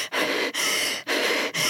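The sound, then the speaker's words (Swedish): A voice demonstrates anxious stress breathing, like gasping for air: three or four quick, loud, breathy gasps in rapid succession, each a sharp airy inhalation separated by brief pauses, with no talking. “Och det blir ju nästan, som man säger på engelska, grasping for air. Stressandning liksom.”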